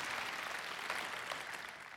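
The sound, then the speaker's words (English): An audience claps steadily for two seconds, a dense, even wash of many hands with no single claps standing out and no voices on top. “I love when you clap because it gives me a chance to drink.”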